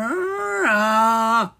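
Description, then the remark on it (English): A voice imitates a giant snore: one drawn-out, droning vocal sound, fairly loud, rising in pitch midway before cutting off, with no other sound around it. “She let out another giant snore.”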